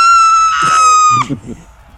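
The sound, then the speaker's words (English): A player's single loud, sustained, high-pitched in-character scream, held steady for about a second and cutting off sharply, followed by brief murmuring voices underneath. “screams at the sight of it.”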